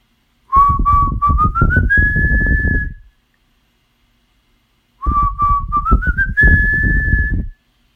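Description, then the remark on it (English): A breathy, whistle-like magic flute plays the same short rising magic tune twice, each phrase climbing to a high held note, with a pause between and an airy rumble underneath. “Then, from behind them came the sound of the magic flute.”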